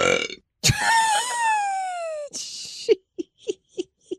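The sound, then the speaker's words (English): A woman's loud, drawn-out burp rumbles for over a second and a half, its pitch sliding downward, followed by a breathy rush and a few short, quick bursts of sound. “The belches that come out of this woman's body never cease to amaze me.”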